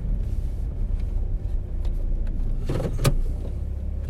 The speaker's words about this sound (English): Car's running again. I was being a gentleman and moving my car up.